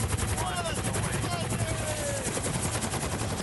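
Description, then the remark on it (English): A steady, rapid chopping of helicopter rotor blades fills the whole stretch, loud and continuous, with faint voices rising briefly underneath; from a video of a man bungee jumping out of the helicopter. “He's already out the fucking helicopter.”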